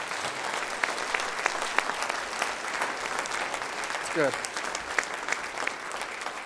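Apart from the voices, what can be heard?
audience clapping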